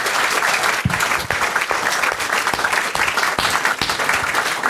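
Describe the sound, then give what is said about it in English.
A crowd at St James's applauds at the end of a live show, a dense wash of many hands clapping at once with scattered sharper claps standing out, sustained and loud throughout with no voices. “Before we go, please give a big round of applause and show your appreciation for everyone here at St James's and at Avalon, who's made the show possible.”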